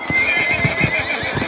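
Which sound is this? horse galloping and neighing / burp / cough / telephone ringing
horse galloping and neighing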